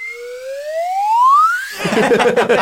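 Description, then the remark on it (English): A swanee whistle slides smoothly upward in pitch for under two seconds, fairly loud, then cuts off into a dense, noisy burst of mixed clattering sound. “can we repeat that noise here in the edit, please? And then a swally whistle.”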